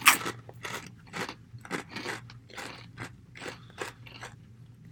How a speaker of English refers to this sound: Solid crunchy chip. Mm-hmm. Kettle style. It almost has a little bit of vinegar heat. Oh, yeah. Good thickness.